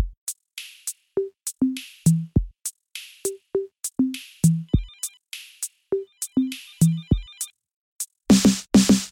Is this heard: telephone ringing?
yes